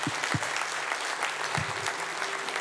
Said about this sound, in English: Let's applaud those who said yes to Jesus today.